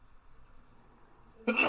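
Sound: sneeze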